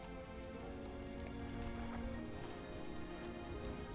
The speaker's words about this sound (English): The rain is beginning to clear up.